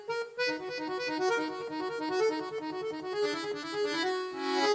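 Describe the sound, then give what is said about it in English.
An accordion plays a lively, steady melody with reedy, sustained chords underneath, bright and continuous throughout, with no voices. “It's an accordion.”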